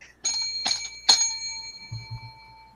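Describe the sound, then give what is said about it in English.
A hand bell is struck three times in quick succession to start a five-minute round. Each bright metallic ring overlaps the next and fades into a lingering shimmer, followed by a few soft low thumps. “When I ring this bell, you may go at it.”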